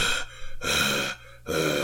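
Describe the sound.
A voice imitates the heavy mouth-breathing of Pittsburgh locals: loud, raspy breaths alternating in and out, about three full cycles with brief pauses between them, no words spoken.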